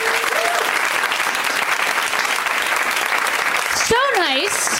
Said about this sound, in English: You guys, are you ready? First of all, round of applause for these wonderful people.